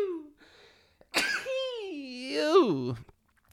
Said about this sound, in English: oh, I got to sneeze.